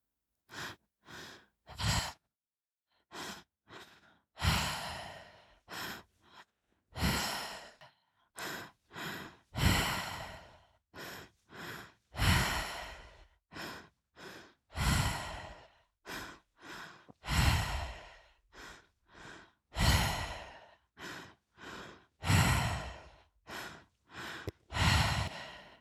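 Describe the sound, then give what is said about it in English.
Deep breathing in a guided breathing exercise repeats steadily: quick sharp inhales followed by long, heavy sighing exhales, cycling many times with brief silent gaps and no talking. “And I want you to use that breath to breathe in and scoop all of that tension out.”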